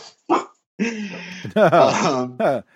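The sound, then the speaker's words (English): A dog named Griffin barks in a short series of loud bursts, a couple of them stretched into drawn-out, whining yowls, with brief pauses between. “Yeah, I don't know why it's barking.”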